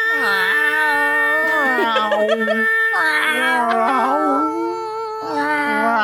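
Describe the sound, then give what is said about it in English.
People wail and yowl in drawn-out, wavering high-pitched tones, imitating cats caterwauling, with several overlapping voices rising and falling loudly for about six seconds. “We'll have to caterwaul for them.”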